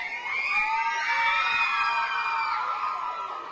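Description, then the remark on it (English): A large waiting crowd chants and cheers excitedly, a dense, steady roar of many raised voices with high-pitched whoops rising above it, staying loud without a break for the whole stretch. “you can hear people are chanting and getting real excited.”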